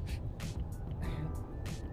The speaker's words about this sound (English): Juan stops the car.